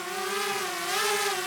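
A drone's rotors whine in a steady, buzzing hum, the pitch dipping slightly and rising again as it flies over fire-ravaged land, flown by a student, with no voices present.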